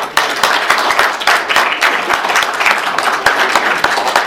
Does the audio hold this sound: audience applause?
yes